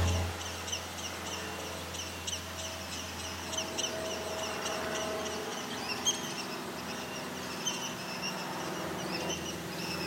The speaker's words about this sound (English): It's an eastern kingbird, two of them now.